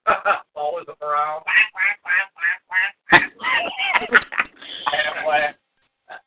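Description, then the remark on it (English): A person's voice imitates a duck, letting out a rapid string of nasal quacks in close succession, loud, with a couple of sharp clicks mixed in. “Do I get money for doing an Aflac commercial now?”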